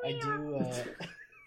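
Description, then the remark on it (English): A person does a fairly loud vocal imitation of a cat, one long drawn-out meow with a wavering pitch that trails off, followed by a brief breathy sound. “Sorry, I'll start meowing.”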